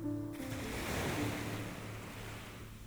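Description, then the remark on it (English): Ocean waves wash steadily onto a shore in a broad, hissing roar, with a low rumble underneath and no voices, a continuous surf sound that swells slightly and then eases. “And the sound of the waves activates the parasympathetic nervous system, which promotes relaxation.”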